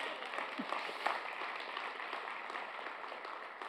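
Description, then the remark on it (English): An audience claps together in a steady, dense patter of applause that holds at an even level throughout, with no voices standing out from the crowd noise. “That deserved more than a golf clap.”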